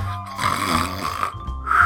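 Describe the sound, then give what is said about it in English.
Steady, rumbling snoring from a man sleeping in a stuck elevator, one drawn-out rattling breath that swells and fades over about two seconds, with no talking over it. “What if he's a snorer? I can handle snoring. He is a snorer.”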